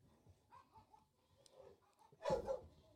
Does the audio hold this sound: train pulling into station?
no